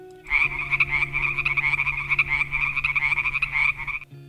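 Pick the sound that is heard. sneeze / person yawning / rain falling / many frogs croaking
many frogs croaking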